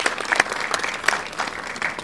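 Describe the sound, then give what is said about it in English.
A crowd at a tournament claps steadily for the Teen Titans team representing the Boys and Girls Club of Greater Lowell, a dense patter of many hands at moderate volume, with no voices standing out above the applause. “So big round of applause for them.”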